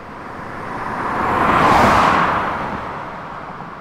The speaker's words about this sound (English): So that one is pointing the mic. It stays still. The car passes the mic, but the mic does not move. I see. That one, you can tell that the pass is much faster.